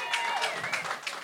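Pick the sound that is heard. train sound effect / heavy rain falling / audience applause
audience applause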